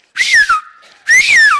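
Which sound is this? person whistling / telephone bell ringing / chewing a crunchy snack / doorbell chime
person whistling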